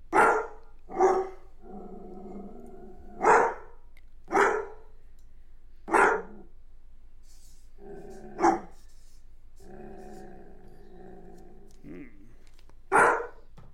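A dog lets out about seven sharp, loud barks at uneven intervals, with softer drawn-out tonal sounds, like whining or low vocalizing, filling several of the gaps between barks.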